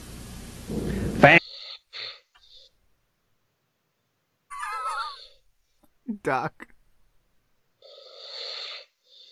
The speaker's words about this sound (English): What's with all the breathing? Stop breathing